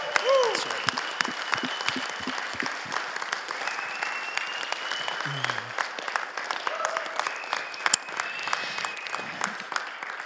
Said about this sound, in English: Thank you all for being a part of this. We can give an applause now.